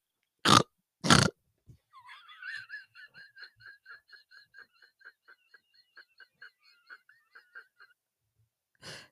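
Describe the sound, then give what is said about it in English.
A person imitates a pig, making a long run of quick, nasal oinking grunts in a steady rhythm, fairly loud, after two sharp bursts of noise at the start. “Oink, oink.”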